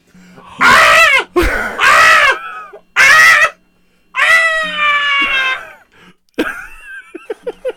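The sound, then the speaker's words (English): Loud, harmonic wailing screams come in a few bursts, then stretch into a long, high, strained screech, ending with several short sharp squeaks. No speech accompanies them, and the sound is intense. “I like how it went from screams to like screeches.”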